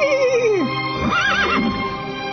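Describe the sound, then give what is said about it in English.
A horse whinnies loudly, a single long neigh that slides downward, then breaks into a shaky, quavering warble before trailing off, with no voices present. “Horse says, don't cut my head off.”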